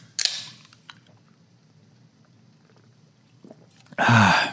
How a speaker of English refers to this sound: Well, I'll tell you after I have a little sip of a beverage.